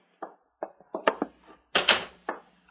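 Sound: door being opened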